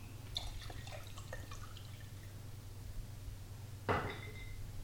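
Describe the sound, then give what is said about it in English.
Water trickles and drips into a container in scattered splashes, then a brief, louder pour near the end, over a steady low hum with no talking; the container, holding hot water with dissolved sulfur, is being filled up with water. “What I do, I get one of these bad boys at the beginning of the day, put in hot water, put in a big tablespoon of our sulfur, and then let it dissolve, and then fill the rest up with water, and then use this.”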